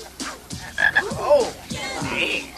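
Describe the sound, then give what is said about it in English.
A frog croaks repeatedly, a series of raspy, throaty calls in an irregular rhythm with no voices around them. “I thought you were gonna play with my frog.”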